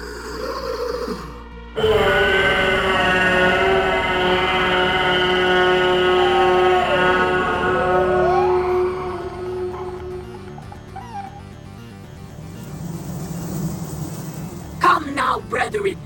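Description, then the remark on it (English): A screech of bereavement to summon insects: a loud, sustained howling cry from a human voice, holding a steady wail for several seconds with wavering, gliding pitch before fading, then a few rough noises at the end. “I shall summon my playfellows with a screech of bereavement.”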